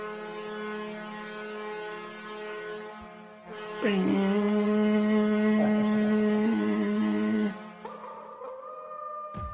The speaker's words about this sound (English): Beautiful howl. That is something you recognize very well, gentlemen.